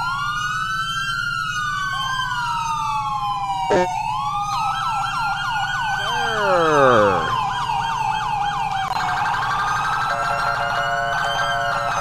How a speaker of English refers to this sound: Siren demo. Federal Signal Smart Slide. Believe this is Federal Signal SS2000. Federal Signal Smart Siren 2000.